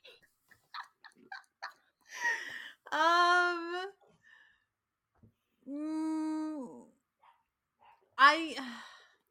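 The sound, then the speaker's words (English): A dog whines in three drawn-out, high-pitched cries, each lasting about a second, with soft clicks and mouth sounds scattered in the quieter gaps between them. “My dog is whining in the background.”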